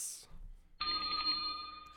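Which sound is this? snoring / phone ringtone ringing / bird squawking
phone ringtone ringing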